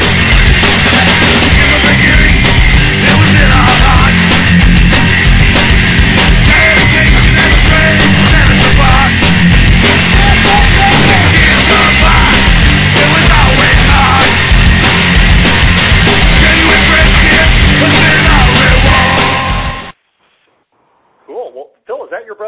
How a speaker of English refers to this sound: Yeah, just to let you know, it sounds horrible on the phone, but online you can actually hear it well. That's so cool. Thank God for royalty-free music. What would we do without it?